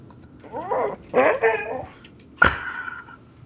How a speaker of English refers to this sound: My dog is even expressing his pain in this movie. Tell him, buddy. Tell him.